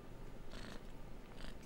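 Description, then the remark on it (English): A cat named Fox purrs steadily, a low, soft rumble swelling with two breathy surges as it breathes in and out, with no voices. “Oh, look at that little kitty.”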